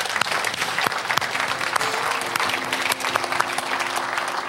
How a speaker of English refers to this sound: Let's clap for those folks who gave their heart to the Lord.